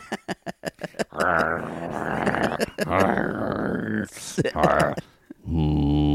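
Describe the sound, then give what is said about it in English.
A few quick taps open, then an excited dog on a beach lets out long, wavering growls and whimpers as a man arrives, breaking briefly before a final drawn-out groan. “This dog is excited.”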